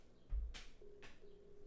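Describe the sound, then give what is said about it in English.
A phone call being placed: a soft handling thump and a couple of clicks, then a steady electronic ringing tone that repeats in long beeps, fairly quiet and without any voices. “We'll just call somebody else.”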